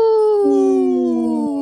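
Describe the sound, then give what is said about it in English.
A wolf howl: a long, loud, steady tone that slowly sinks in pitch, with a second lower howl joining partway and fading out before the end. No one speaks. “Wow, that was a good howl.”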